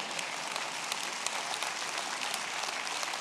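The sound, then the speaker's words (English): A crowd applauds steadily, many hands clapping in a dense, even wash of crackling claps that holds at a constant level for about three seconds with no voices. “Y'all could clap a little harder than that.”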